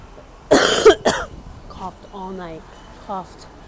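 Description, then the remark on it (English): Two harsh, loud coughs close to the microphone in quick succession, followed by a short stretch of voiced, speech-like sound. “coughed all night. Wake up, coughing. Go to the bathroom, cough.”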